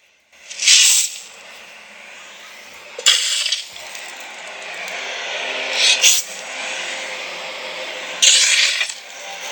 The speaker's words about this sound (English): I must confess, it's a very odd experience watching your own coffin being dug up.